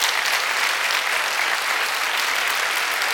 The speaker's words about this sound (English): Remain standing. You can stop clapping, but remain standing. Stop clapping, but remain standing.